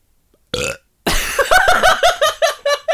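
A loud burp: a short belch, a brief pause, then a long drawn-out one that breaks into a series of rhythmic, croaking pulses, with no talking.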